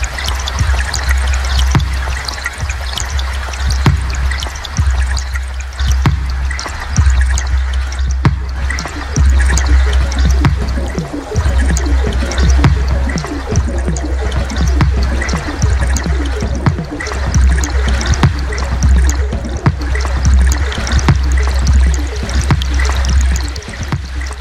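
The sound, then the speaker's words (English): Water of Lookout Creek trickles and drips steadily, a dense, continuous babble of small splashes, with no voices, just the flowing water and a low rumble underneath. “First Reaction Listening Session: Lookout Creek”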